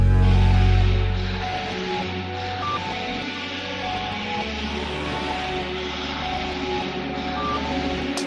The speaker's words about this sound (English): I'm hearing like a low brass sound or something like that. That guy. That's like a synthetic brass, synthetic strings sample that I've got going on as well. That is from the, another preset, basically. But I've just chucked a load of delays on it.